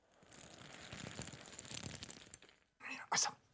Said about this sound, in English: Hail.